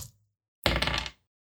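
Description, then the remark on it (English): A brief, bright clatter of dice tumbling across a hard tabletop, lasting about half a second before settling into silence, as players roll for a perception check in a tabletop role-playing game. “All right, each of you walk in, each of you give me a perception roll. Holy shit, dice.”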